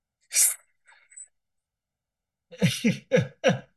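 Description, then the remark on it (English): A person voices a sharp, airy hiss, then after a pause lets out a quick run of four or five breathy, sneeze-like hisses, like a vocal imitation of a snake sneezing. “You sound like a snake sneezing.”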